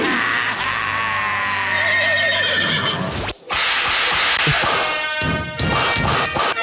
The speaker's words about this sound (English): He's just whipping the shit out of that horse. Fuck that horse.